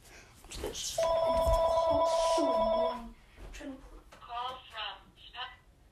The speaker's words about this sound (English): The phone is ringing, it's really annoying.